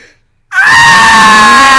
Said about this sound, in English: Oh, yeah, I remember when he screamed? Oh, man.